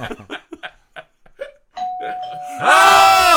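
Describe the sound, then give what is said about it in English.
A doorbell rings after a few short bursts of voices: a steady, clear tone sounds first, then a louder, brighter chime takes over and rings on until the end. “Who's knocking at the door?”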